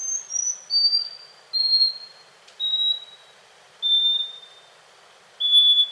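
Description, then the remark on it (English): A scaly-breasted wren sings a series of pure, high whistled notes, each slightly lower than the last, separated by pauses that grow about half a second longer with every note. “The scaly-breasted wren lives in Central and South America and has a lengthy song of whistled notes separated by pauses.”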